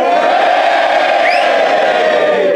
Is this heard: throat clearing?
no